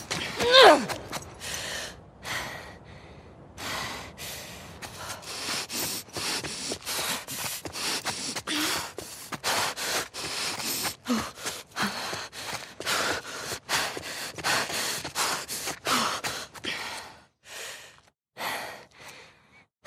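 Heavy breathing of a video game character, produced by the game's breathing system: a steady run of short, ragged inhales and exhales with gasps and sighs, loud and breathy, fading toward the end with a few final breaths.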